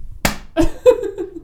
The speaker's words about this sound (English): See, the clap is actually a good thing because it comes up as a spike on the audio.